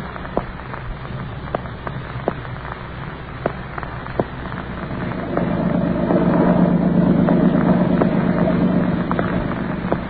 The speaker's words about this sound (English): I sit here in the boat as it skims over the lake toward the mainland.